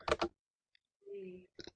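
A few sharp computer keyboard clicks come in quick bursts, separated by a short pause and a brief low tonal hum, then another quick pair of keystrokes. No one speaks.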